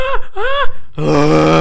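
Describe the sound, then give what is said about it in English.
A little boy eating ice cream while running around among animal enclosures makes playful animal noises: two rising, wavering whoops followed by a sustained, buzzy low call with rich harmonics, loud and unaccompanied by speech. “continues to enjoy his ice cream while running around making animal noises.”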